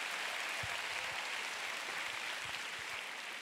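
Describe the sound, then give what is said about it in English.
A crowd claps steadily and loudly to give the Lord a big clap, many hands blending into a dense, continuous wash of applause with no voices standing out. “Oh, come on, you want to clap? Give the Lord a big clap.”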